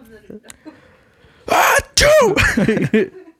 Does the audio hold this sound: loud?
yes